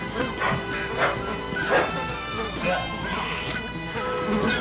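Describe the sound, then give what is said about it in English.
Puppies yip and bark in short repeated bursts, mixed with high whimpering cries, steady in loudness over a continuous background murmur. “So I had neighborhood kids go steal those dogs for me so I could allow sandflies to eat them alive to see what happens while we slit the vocal cords so we don't have to hear them.”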